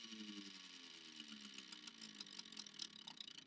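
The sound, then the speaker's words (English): An air conditioner runs steadily, a continuous low mechanical hum with a faint whirring tone and airy hiss on top, fairly quiet and unbroken, with no one speaking. “Alright, that was my air conditioner making a fucking guest appearance.”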